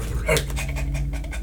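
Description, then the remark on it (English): A dog pants and slobbers, with quick, wet, rhythmic breaths repeating over a steady low hum, and faint vocal sounds mixed in. “Dog is slobbering all over.”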